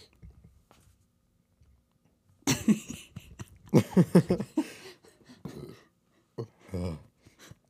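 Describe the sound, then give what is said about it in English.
After a quiet moment, a croaky, drawn-out burp from chugging a can of Sprite rumbles out in several rough low bursts, then trails off with a couple of shorter gulping grunts. “I just chugged that can of Sprite to get a good burp for the intro, but it wasn't even that good.”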